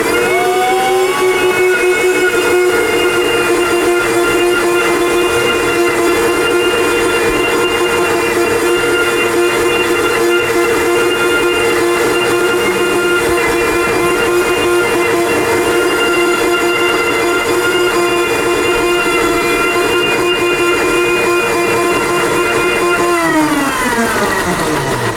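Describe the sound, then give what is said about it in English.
A blender motor runs loud and steady for over twenty seconds during a second blend of a very thick smoothie, a strong humming whine with rich overtones, then winds down in pitch as it switches off. No one speaks. “Coming out of the blender now.”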